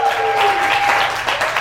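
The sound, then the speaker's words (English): An audience at a presentation claps steadily in a dense, continuous wash of applause, fairly loud, with a faint sustained tone running underneath. “Round of applause, guys.”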